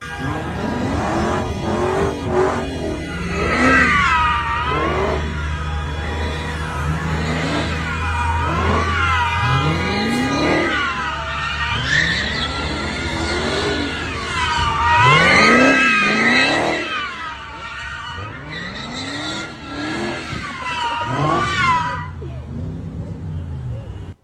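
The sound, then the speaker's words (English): A car engine revs hard again and again with rising and falling whines as it spins donuts and burnouts in the street, disrupting traffic, tires squealing, loud, with voices of onlookers mixed in. “It says that the people in the car doing the donuts and burnouts and disrupting traffic and people's lives have a Palestinian flag.”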